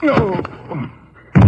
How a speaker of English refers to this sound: Hey, you slugged him with the gun.